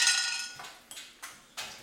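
Dice clatter across a tabletop: a bright, rattling burst followed by four sharp clicks spaced unevenly as they bounce and settle, each fading quickly. No one speaks.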